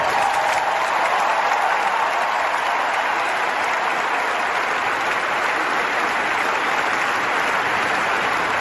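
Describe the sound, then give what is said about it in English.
A large arena crowd at a North Carolina basketball game applauds and cheers in a loud, sustained roar of clapping that holds steady for the whole stretch without any break or voices standing out. “And I hope in the second half you'll get even louder and cheer harder.”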